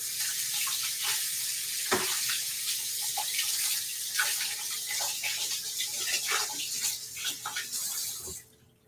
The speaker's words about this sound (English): And I am going to wash my hands really quick.